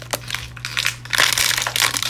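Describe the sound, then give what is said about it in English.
A plastic water bottle crinkles and crackles in a quick series of irregular, bright snapping bursts that grow busier and louder toward the end, over a faint low hum. “Oh, yeah, that with the water bottle.”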